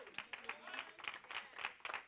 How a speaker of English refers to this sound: Now, y'all missing it. You clapping, but you're not getting it.